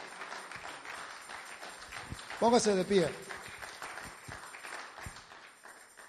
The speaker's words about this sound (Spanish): Amén. Démosle fuerte aplauso.